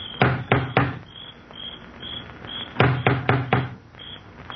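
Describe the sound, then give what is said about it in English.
A huge knocker on the front door of a crumbling mansion, lifted by an elderly man, bangs loudly in two bursts of three or four quick, booming strikes, with a steady chirp of crickets continuing in the background. “He looks about uneasily, then lifts the huge knocker on the door.”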